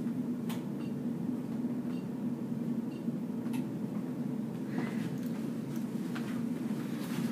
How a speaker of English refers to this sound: I know. I thought there was an airplane directly over the building. But in case y'all weren't aware, we have our AC on, apparently. Yeah, that's... Well, it's not even... It's more of a heater, probably, yeah.